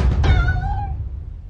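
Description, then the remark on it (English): A single drawn-out meow from Puska, an adopted street cat, fairly loud, rising then fading over about a second, with a low rumbling background noise underneath and no talking. “If you're not aware, Puska is a street cat that I've adopted.”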